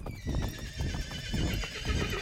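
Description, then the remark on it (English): A wounded short gray dun horse in a ravine whinnies loudly in reply to cavalrymen calling to it, its shrill, wavering neigh stretching across the whole moment over low, rumbling background noise, with no one speaking. “He whinnies back acknowledgement.”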